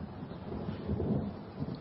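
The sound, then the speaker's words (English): A low, steady rumble of thunder rolls through, swelling slightly in the middle before easing, with a faint hiss of rain-like noise beneath it and no voices. “Looks like it's going to rain.”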